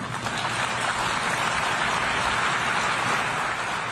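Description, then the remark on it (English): An audience applauds President Biden's speech, with Ukrainian President Volodymyr Zelensky among those clapping, many hands clapping into a dense, even crackle that holds at a constant loudness for several seconds, with no voices audible over it. “And part of that applause was from Volodymyr Zelensky, the president of Ukraine, who was in the audience for Biden's speech.”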